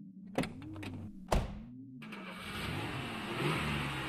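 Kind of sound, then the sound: vehicle, car engine starting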